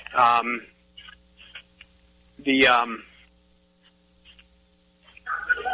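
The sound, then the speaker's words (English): A dog barks twice as two visitors arrive, sharp and fairly loud, a couple of seconds apart, over a steady electrical hum with faint scattered noises in between. “I hear your dog barking in the background.”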